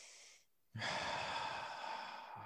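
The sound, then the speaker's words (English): Breathing right against a microphone: a short airy exhale, a brief pause, then a longer, loud, rushing breath with low rumbling puffs, no speech. “I'm breathing on the mic,”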